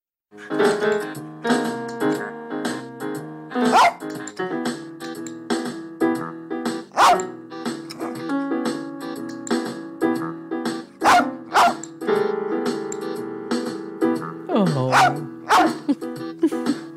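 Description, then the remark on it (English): Lolabelle, a blind rat terrier from the film Heart of the Dog, plays keyboards set on the floor and barks in short, scattered yelps over sustained electronic keyboard chords and a steady backing track. The barks are loud and land irregularly every few seconds. “That is your dog, Lolabelle, your late rat terrier, Lolabelle, from Heart of the Dog.”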